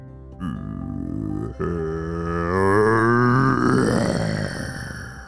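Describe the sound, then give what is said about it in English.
A deep, guttural monster growl made by a voice, starting with a short rumble, then swelling into a long, loud roar that rises slightly in pitch before trailing off. “As the ground shook and that growl poured out from the ground, he saw it.”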